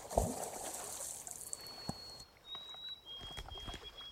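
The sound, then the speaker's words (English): Gentle water sloshing and lapping nearby in soft irregular splashes as someone swims through it, fairly quiet with a faint thin high tone drifting in the background. “I've never seen such an abundance, and I feel privileged and humbled to be a guest here as I tuck in, the loon's calls echoing over the water, and someone swimming nearby.”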